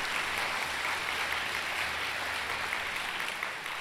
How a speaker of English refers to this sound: Give yourself some applause.